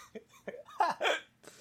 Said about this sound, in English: Oh, I got hiccups now.